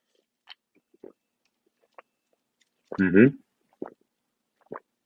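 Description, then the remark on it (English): Someone takes one sip of a drink: a few small wet mouth clicks, then one loud throaty gulp midway, followed by a couple of soft clicks. “Ooh, really picking up on that gulp sound.”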